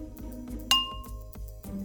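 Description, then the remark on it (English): A single bright clink of glasses touching in a New Year toast, clear, its ringing tone lingering briefly over a soft low background hum. “Cheers to that. Cheers to that.”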